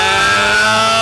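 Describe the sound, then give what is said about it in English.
A person imitates the scream of the pig bear with a woman's voice from the film Annihilation, in a strained, high, woman-like voice, yelling one word in a single loud, harsh, distorted cry that lasts about a second. “That fucking that pig bear. The bear with the girl's voice because he ate her.”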